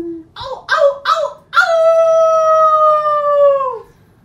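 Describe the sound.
A person imitates a wolf howl: three short yipping barks, then one long, loud, sustained howl that slowly falls in pitch and fades out, voiced alone.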